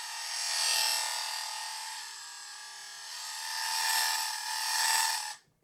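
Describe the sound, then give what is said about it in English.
The small motor of a vintage Star Wars toy, run on fresh AA batteries, whirs steadily with a bright, buzzy gear whine, swelling louder and softer as the toy is swept past in a flyby, then cutting off abruptly after about five seconds. “I mean, nothing says vintage Star Wars toy like that sound. Than AA batteries and a little gear on a motor.”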